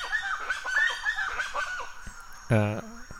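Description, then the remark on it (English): Birds squawk loudly in a rapid, overlapping string of harsh calls, followed by a brief pause and then one louder, drawn-out honking squawk. “those birds are going really, it's a lot of squawking.”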